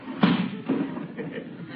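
A neighbor slams a window shut late at night with a loud thud, followed half a second later by a second, softer knock as it settles, then a low muffled rumble.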